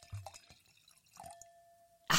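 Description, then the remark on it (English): Wine from Together Wine pours into a glass: a few soft glugs and drips over a faint ringing glass tone, ending in a sudden louder splashing rush. No one speaks. “Oh, there's a pour coming.”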